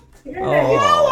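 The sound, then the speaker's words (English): A young boy running around the house lets out a loud, sustained, high-pitched scream of delight because his military dad is about to come home after several weeks away, rising quickly after a brief quiet start and holding strong for about a second. “runs around the house screaming with delight because a military dad is about to come home through the door from being away for several weeks. Here's how happy the boy was. He's just running around the house screaming.”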